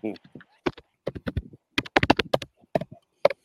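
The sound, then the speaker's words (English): Irregular clicking of computer keys being typed, fairly loud, in quick uneven bursts, with a brief voice-like sound at the very start, heard over a call in place of a participant's voice as he moved his mouth. “Bro was moving his mouth, and I heard the keys typing.”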